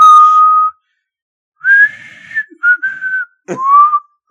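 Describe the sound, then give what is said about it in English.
A slow, haunting whistled remake of The Andy Griffith Show theme: a long held note, a pause, then several clear sustained and sliding notes in a short phrase, fairly loud with no talking. “It was like a haunting, whistling remake of the Andy Griffith thing.”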